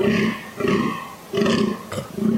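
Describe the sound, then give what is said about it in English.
A fallow deer buck gives a series of deep, rasping, belch-like rutting groans, about four loud pulses in quick rhythm, with no talking over them. “That's a fallow deer. Is that what that is? Oh, they have a weird noise.”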